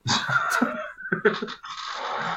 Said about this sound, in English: He's not snoring now. Oh, okay, yeah, good. We caught you snoring.